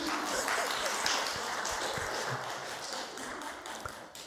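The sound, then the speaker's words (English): A crowd applauds: a dense, steady patter of many hands clapping at once, holding an even loudness for about four seconds with no voices standing out. “Applause, applause.”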